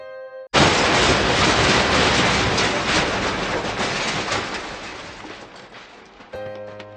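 A sudden, loud crash bursts in within a car hold, like a huge steel vault door banging shut, then several seconds of harsh, rending and ripping metallic noise that slowly tapers off before a steady tonal hum takes over at the end.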